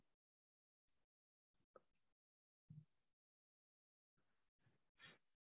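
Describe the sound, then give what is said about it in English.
Sharp breaths and gasping inhales build up to a sneeze, followed by a few more breathy exhalations and sniffs, with silence between the bursts and no talking. “See, go sneeze.”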